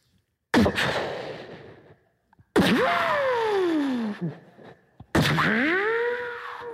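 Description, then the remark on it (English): A voice imitates gunshots with ricochets using the mouth: three loud blasts about two seconds apart, each a sharp crack trailing into a whining, pitch-sliding zing that fades out. “I was born with the ability to memorize a sound and duplicate it with my mouth. For example, a gunshot with a ricochet.”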